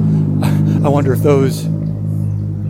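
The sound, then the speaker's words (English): A loud car engine with modified mufflers rumbles steadily and deeply throughout, while a person briefly speaks over it. “Boy, that car.”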